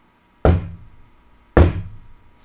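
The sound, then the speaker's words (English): Two loud, heavy knocks land about a second apart, each a deep thud with a short fading ring, standing alone against near silence with no voices. “And by the way, those knocks are him. He's a centaur. He counts like a horse.”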